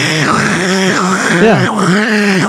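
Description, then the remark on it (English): A voice imitates the sick-duck-like noise a vintage Dragon Walker toy makes when squeezed, a loud, nasal, wordless warble that bends up and down in pitch in a few drawn-out swoops over about two and a half seconds. “It makes like a duck. That's nice. Yeah. Was that a duck sound? Like a sick duck.”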